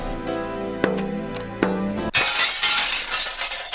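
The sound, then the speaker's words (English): A few sharp cracks ring out over a sustained tonal sting, then at once a loud, bright burst of shattering glass takes over and lingers with a crisp, hissing spray of shards. “That's the love heart. Cracks like glass.”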